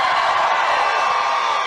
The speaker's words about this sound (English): Thank you very much. Thank you very much. That's great. This is a big crowd of people. This is nice.